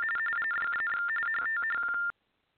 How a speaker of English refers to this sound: Oh, goodness, what was that sound? Are you still there? Yeah, I'm here. Oh, did you hear that weird dial-up modem sound?